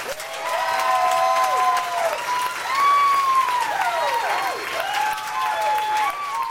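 An audience applauds a storyteller, clapping steadily and loudly throughout, with high whoops and whistle-like cheers rising and sliding over the dense patter of hands.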